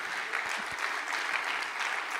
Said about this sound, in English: If you believe that this morning, why don't you clap your hands and just let the Lord know, I believe that that's right.